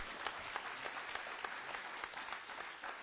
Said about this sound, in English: Somebody give him a hand clap of praise.